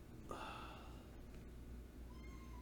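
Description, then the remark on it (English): A single drawn-out cat meow rises sharply, then trails off, followed by a fainter second mew against a steady low background hum; no one speaks. “Oh, the cat is so needy right now.”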